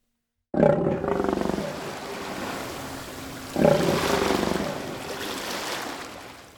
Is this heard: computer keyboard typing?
no